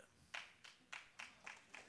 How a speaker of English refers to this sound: I knew the claps wouldn't go up there.